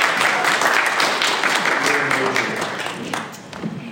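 A roomful of people applauding, a dense steady wash of clapping that carries on for several seconds and tapers slightly at the end, with a voice or two calling out underneath.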